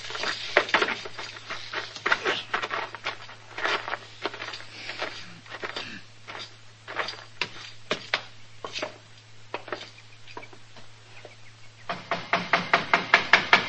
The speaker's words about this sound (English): Don't be banging on the door. I seen you coming.